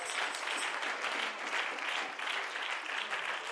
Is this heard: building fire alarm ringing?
no